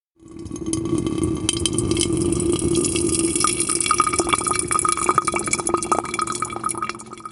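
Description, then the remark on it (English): Water pours in a steady stream for brewing coffee, with scattered drips and small splashes over about seven seconds, a continuous liquid rush with bright, irregular tapping drops. No one speaks. “We're going to finish brewing, and then we come back to you on the show be right back.”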